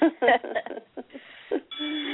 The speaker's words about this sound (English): And there's our school bell, which means that our discussion is finished for today.